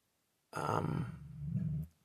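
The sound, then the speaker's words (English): A dog named Willa lets out a single drawn-out, gruff bark that trails into a low rumbling growl, loud, with no other sounds or voices around it. “Stop. Stop. There's no need to bark.”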